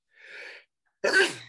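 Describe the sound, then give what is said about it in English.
A single sneeze: a soft, breathy intake of air, a brief pause, then a sudden loud explosive burst that trails off. No one speaks. “Every time somebody sneezes, oh, he has COVID.”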